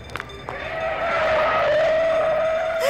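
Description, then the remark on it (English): A car skids in Paris with a long, loud, high-pitched tire squeal that holds steady for a couple of seconds and dips slightly in pitch as the car comes to a stop. “Quick, flag down that next car.”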